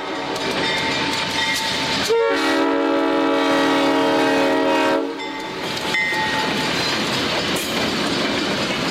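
A rumbling train passes with steady rail noise, and a loud, sustained horn blast sounds for about three seconds in the middle before the rolling clatter continues.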